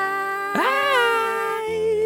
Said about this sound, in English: There's definitely a cat in my house.